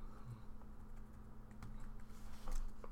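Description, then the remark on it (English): Quick, irregular clicks of a laptop keyboard as someone types a tweet, with a steady low hum underneath and no talking. “Fucking tweeting on your laptop, you dweeb.”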